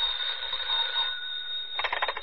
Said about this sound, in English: A few minutes after the grandfather clock struck 11, the telephone rang.